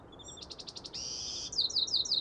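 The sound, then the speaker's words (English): A single songbird sings its first song of the day at dawn in the chaparral, a short, bright phrase: a quick series of repeated high notes, a sustained trill, then several rising chirps, against a quiet, faintly hissing outdoor background. “There it is, the first song of the day, and maybe the last cricket of the night.”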